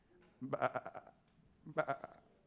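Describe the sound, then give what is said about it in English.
Two wavering, quavering sheep bleats, each lasting about half a second and separated by a short pause, with nothing else in the background. “And he says, well, not only did you bring Agag back, but I hear some cattle lowing and I hear some sheep bleeding.”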